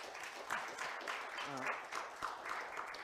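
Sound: audience clapping and applauding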